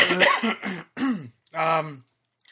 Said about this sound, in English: You guys need to talk so I can clear my throat.